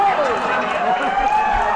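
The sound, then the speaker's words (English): A large crowd at a Donald Trump rally speech roars and shouts together in a steady, dense wash of noise that holds at a high level for the whole short stretch, with overlapping voices rising above the din. “So, yeah, that's the gist of what the crowd was reacting like all night long.”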